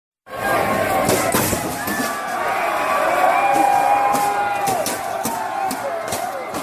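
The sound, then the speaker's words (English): A loud, dense outdoor street crowd in Keene, New Hampshire roars continuously, with overlapping shouts and cheers, scattered sharp bangs and thuds cutting through the din, as police try to contain the crowds. “live in Keene, New Hampshire, where we have been here as police continue to try to contain the crowds in this area where they escalate.”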